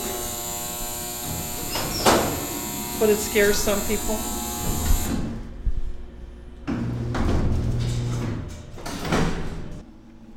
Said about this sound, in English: Now we head down to the basement by way of the freight elevator. When the gate comes down, so you don't get knocked in the noggin.